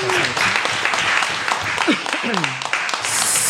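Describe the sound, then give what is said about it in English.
A crowd applauds in a steady, dense wash of clapping lasting a few seconds, with some voices and cheers mixed in beneath the noise. “So let's give her another round of applause for doing that.”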